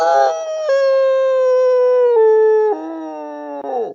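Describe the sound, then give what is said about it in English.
A person lets out one long, loud werewolf-style howl, a sustained tone that steps down in pitch in stages before sliding off at the end, with no talking over it. “I think that was more of a werewolf, don't you?”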